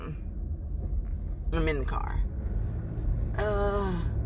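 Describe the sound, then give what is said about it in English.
A steady, deep road rumble fills a moving car's interior, continuous and fairly loud throughout, with two short bursts of a voice rising briefly above the drone. “If you can't tell, I'll try to dampen this down later. I'm in the car.”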